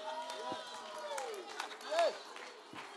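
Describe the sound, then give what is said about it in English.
Scattered hand claps from a crowd keep going in an uneven rhythm, sharp and fairly faint, mixed under a voice that speaks and sings over them. “Whoever's continuing to clap, that's awesome.”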